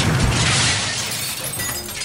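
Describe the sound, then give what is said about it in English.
A loud, sustained shattering crash like a huge pane of glass breaking as a dome is shattered by a surface-to-dome missile, with bright crackling debris spraying and tinkling for about two seconds, intense with no voices. “The dome is shattered.”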